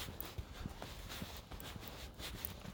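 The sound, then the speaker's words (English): A horse's hooves clip-clop in a loose, uneven rhythm, several soft knocks spaced across a few seconds against a quiet outdoor background, on a coastal path by a beach on a calm, windless day, with no talking. “It's usually the route, although I've got to navigate past this horse”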